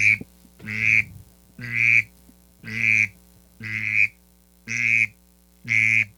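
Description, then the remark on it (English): A duck call blown to imitate a drake mallard's raspy whistle sounds seven times in a steady, evenly spaced rhythm, each note about a second long, loud, with no talking. “But you kind of have to put that into it to get that raspy whistle sound.”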